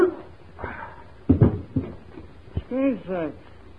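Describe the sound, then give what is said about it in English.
A mutt gives a few sharp, high yelping barks as it goes at a man, after a cluster of thumping scuffle noises, the barks rising and falling in pitch over faint background hiss. “Do something, this crazy mutt's calling on me. Watch out, you get him off of me.”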